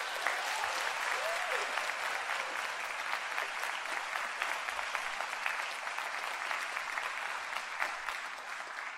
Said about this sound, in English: It's because of our fabulous students and the fabulous music teachers that we have at Rotolo and at our elementary schools. We give all of them a round of applause.